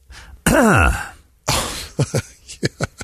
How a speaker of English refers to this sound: Why are you coughing? Oh, why did you cough?